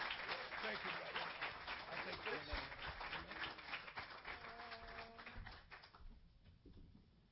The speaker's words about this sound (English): Come on. Give them one more big hand clap of praise for God's glory.